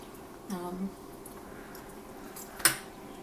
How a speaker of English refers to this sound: The onions have not fully cooked in, and I'm having trouble trying to spoon these really hot beans up, but I think it's good.